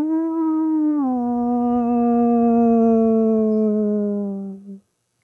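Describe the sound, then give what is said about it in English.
A single long, low, mournful howl from the dark end of a warehouse, like a sparking locomotive engine, holds a steady pitch for nearly five seconds after a slight drop early on, then cuts off abruptly. It is loud and sustained, with no talking. “From the dark end of the warehouse, beyond the wisps of steam rising over the still, came a low, mournful howl, like a sparking locomotive engine.”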